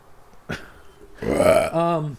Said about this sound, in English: Pardon me. That's an onion rings burp. I've ever heard one. And it tasted good.